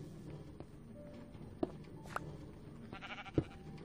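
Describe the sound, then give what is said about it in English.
A few short, quiet video-game sheep bleats, from sheep whose shearing has been temporarily disabled, pop up at irregular moments over a low, steady background hum, with no one speaking. “So I've temporarily disabled the shearing thing, so the sheep will still eat the grass, hopefully, once it turns back into grass.”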